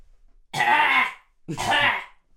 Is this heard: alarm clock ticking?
no